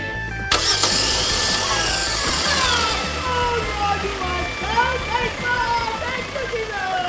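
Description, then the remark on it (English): A car engine cranks and catches after a brief pause, then settles into a loud, steady running rumble with rising and falling whines as it idles and revs. “You know my inward parts, so you know the inner workings of this car, and I know it's going to start in the name of Jesus.”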